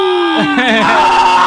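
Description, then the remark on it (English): Several voices yell and scream together on a count of three in a loud, sustained burst, overlapping pitches wavering and rising for about a second and a half with no pause. “Everyone, let's scream.”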